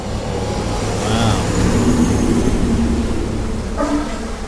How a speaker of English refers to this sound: Ooh, fire engine. Its lights are on. Driving down the street.